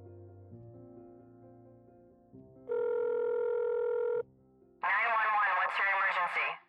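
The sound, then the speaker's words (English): A telephone rings at a dispatcher's in Rockville, Maryland: a steady electronic tone sounds for about a second and a half, then a louder, buzzing ring follows after a short pause, over a low droning background. “The next day, a dispatcher in Rockville, Maryland, received a bizarre and frightening phone call.”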